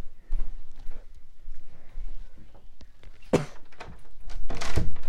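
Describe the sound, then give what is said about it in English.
Shuffling footsteps lead up to a door being pushed shut, ending in a couple of loud wooden thuds near the end. Nobody speaks. “Let me just go and close the door.”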